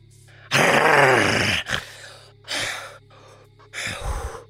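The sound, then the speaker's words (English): A person voices a loud, raspy growl imitating a giant honey badger, one long snarling burst followed by several shorter rough growls with brief pauses between them. “Fill the entire courtyard with your honey badger form and the growl that emits from your mouth”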